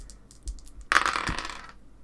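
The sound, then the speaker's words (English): Small dice clatter and rattle across a hard table surface in a quick burst lasting under a second, preceded by a few soft clicks, fairly loud with no voices, rolled for a check in a tabletop game and landing on a total of 7. “Oh, I did a 7, which would be a fail.”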